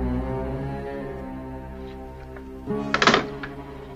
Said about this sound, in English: Sounds like somebody starts a car at the end there. Let me think. I don't know, man. I think I heard somebody hang up a phone and then there's a car starting.